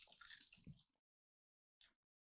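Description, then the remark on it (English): Wet squishing of gum with a bit of Vicks VapoRub being chewed, a dense burst of sticky mouth sounds lasting about a second, then silence and one short final smack. “It's just gum. It's like four chews before you taste it.”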